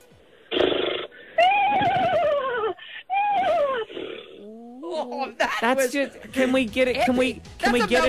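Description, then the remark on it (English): A person imitates a posh horse neigh with their voice: a loud burst of breath, then several whinnying calls that sweep downward and end in a fast, wavering, quavering flourish. “if we don't think that your horse neigh is posh enough, unfortunately you're not getting the double pass, mate.”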